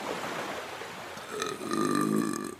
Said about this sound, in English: Is that all salty burp? Salty. I can smell it, dude.